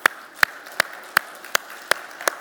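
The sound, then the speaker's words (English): An audience claps in unison for God's word, seven sharp, even claps at a steady, brisk rhythm, with no talking over them. “I think we should clap for God's words.”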